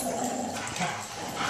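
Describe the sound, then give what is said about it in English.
Dogs play-fight, a steady rough-and-tumble scuffle broken by short whimpers and high yips, with no one speaking over it. “Depending on which dog wins, there could be an adoption fucking place.”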